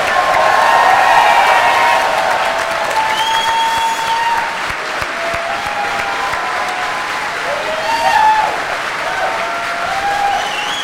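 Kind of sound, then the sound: crowd, audience applause and cheering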